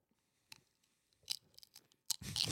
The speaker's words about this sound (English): poised over the microphone, just slow motion chewing all this.